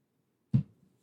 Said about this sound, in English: So, you know, took a drink of water.